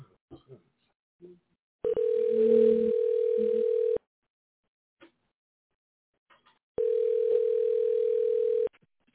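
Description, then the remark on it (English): A telephone call rings unanswered: two long, steady electronic tones, each about two seconds, separated by a few seconds of near silence, with faint brief voice sounds in the gaps. “No, they don't want to answer the phone. We're going to try again.”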